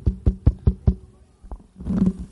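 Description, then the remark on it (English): A quick run of five firm knocks on a solid surface, evenly spaced, followed by a lone knock after a short pause and then a low, muffled rustling. “Yes, that's knocking.”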